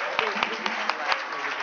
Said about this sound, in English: So clap one more time for my sister and everybody.